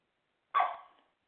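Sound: dog barking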